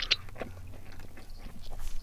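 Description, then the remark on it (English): Wet chewing of soft, sticky, aerated blue raspberry Laffy Taffy candy, with smacking and squelching mouth sounds repeating irregularly over about two seconds, no talking. “While you're having a bit of a chew there, I'll let everyone know what it's made of.”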